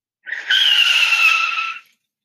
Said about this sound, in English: A thrumming sensation pulses through you. As the engine hums and purrs. Tires are squealing.